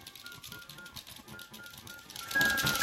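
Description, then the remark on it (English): Scattered, tuneless flute-like notes from a female video game character playing a silly flute refrain, with a rapid clatter of keys being mashed underneath and a brighter, louder burst near the end. “Yeah, she'll play a bunch of random notes. Yeah. It's not very good music.”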